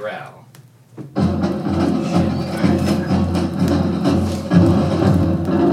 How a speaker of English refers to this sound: This is a gorilla growling. This is what it sounds like when a gorilla growls.